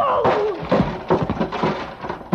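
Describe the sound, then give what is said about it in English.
A heavy steel pulley block, slammed by a man, thuds into a man's body, landing as a series of loud, dull blows, with a brief descending whine at the start. “He slammed that block at me with everything he had.”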